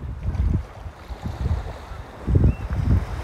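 Ocean waves wash in at a beach in Scotland in low, rolling surges that rise and fall every second or so, with heavy wind rumbling against the microphone throughout. No one speaks.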